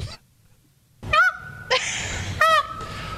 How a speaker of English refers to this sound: It's not a peacock. It's an owl.